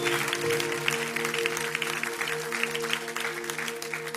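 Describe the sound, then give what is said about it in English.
An audience at Now Church claps steadily as a clap offering to Jesus, a dense, continuous patter of many hands, with sustained keyboard chords humming underneath throughout. “If you got something today, would you just put your hands together and give Jesus a clap offering?”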